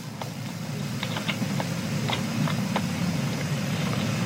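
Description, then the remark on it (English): Rocket engines roar at ignition during a crewed launch followed by Mission Control in Houston, a steady, dense low rumble that holds throughout, with scattered sharp crackles popping over it; no voices. “And ignition.”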